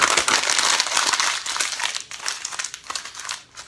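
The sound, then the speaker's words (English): A paper drawing being crumpled into a ball for the trash: a dense run of crisp crinkles and crackles, loud and continuous at first, then breaking into sparser crunches before fading out. No one speaks. “See, I got a drawing right there.”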